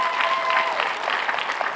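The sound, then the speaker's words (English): Sustained applause from a large church audience giving Jesus a round of applause, a dense, steady wash of many hands clapping at once with a fairly even loudness throughout and no voices standing out. “That's a good place to give Jesus one of the biggest rounds of applause you've given him all day.”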